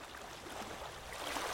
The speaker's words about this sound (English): can you cue up some sexy water noises?